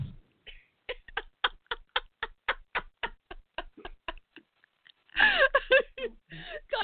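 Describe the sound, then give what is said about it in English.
A steady run of sharp key clicks, about four per second, punched for several seconds, then a brief pause before a voice breaks in with some wordless vocal sounds. “All those keys that you punch.”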